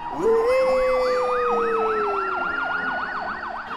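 An ambulance siren wails loudly in a fast, rising-and-falling warble, with a steady lower tone droning beneath it for most of the few seconds.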